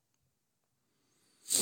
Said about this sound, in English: Excuse me, I just had to sniffle.